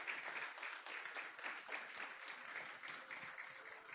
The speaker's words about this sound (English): Give God a round of applause in his house.